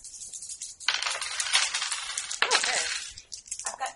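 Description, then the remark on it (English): Dice rattle and clatter across a hard surface in a couple of long bright bursts, followed by a brief final skitter, with no voices; dice, including a D4 and a D6, being rolled for stealth rolls in a game. “You rolled 0, but you didn't fumble.”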